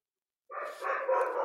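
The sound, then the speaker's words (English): After a moment of silence, a dog lets out a loud, drawn-out bark that runs for about a second, harsh, with no voices around it. “This dog's not going to kill me.”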